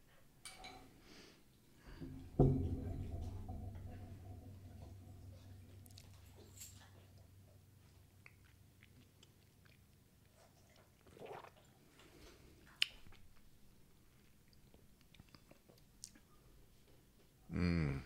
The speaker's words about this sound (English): I think I want to slap some water in it. You trying that? See if it, like, brings out some flavors.